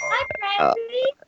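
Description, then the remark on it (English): A small dog whimpers, a quick string of high, wavering whines that rise and fall before trailing off into a faint final squeak. “We love dogs. That is like our thing.”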